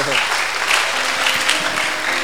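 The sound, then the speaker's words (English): An audience claps together in a loud, dense, continuous burst of applause lasting a couple of seconds, with a voice faintly audible beneath the clapping. “Oh, you are not clapping.”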